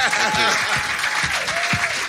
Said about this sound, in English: Please welcome and give a kind of real Islington-shaped, vast round of applause for the great Chris Salovich.